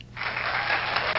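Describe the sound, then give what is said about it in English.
A whole town's crowd cheers and claps in a steady, dense roar that swells in quickly and keeps going without pause, with no clear voices standing out. “The town's cheering behind us.”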